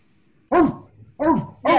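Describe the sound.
Three loud, punchy bark-like shouts from a voice imitating a dog in a pop song chorus, the first alone and the last two close together, with only a faint murmur between them.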